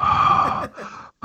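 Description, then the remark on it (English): A voice imitates Wayne Knight's heavy, wet breathing and chop-licking sounds, a loud rasping exhale followed by a softer breathy gasp, a brief pause, then another forceful breath starting. “They had to edit out a lot of Wayne Knight just like just licking his chop sounds. Heavy breathing by Wayne Knight.”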